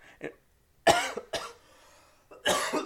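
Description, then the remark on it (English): A few sharp coughs in quick succession, with a small throat-clearing sound at the start and brief pauses between the harsh bursts. “First cough on the podcast.”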